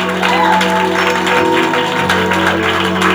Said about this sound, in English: You can do better than that. Can you clap for Jesus? Can you clap for Jesus once more?